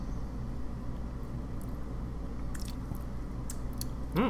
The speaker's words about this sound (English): Let's cheers. And let's take a sip. Okay, let's see.